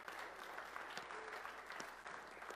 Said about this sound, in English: Give Jesus a hand clap of praise, will you? He's good.